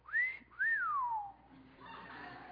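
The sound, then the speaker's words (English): A person whistles the two-part call they taught a pet cockatiel: a quick rising note, then a longer whistle that swoops up and glides down. It is clear, followed by a soft rustle. “It was easy to teach this bird to whistle.”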